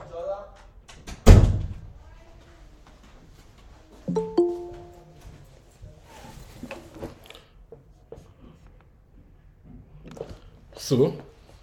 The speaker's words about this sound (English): Let me lock my door.